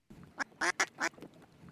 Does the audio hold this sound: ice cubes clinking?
no